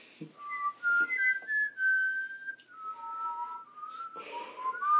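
Close, clear whistling carries a slow, sustained tune with long held notes and gliding pitch changes; more than one whistler seems to join in, with faint breathy noise between phrases.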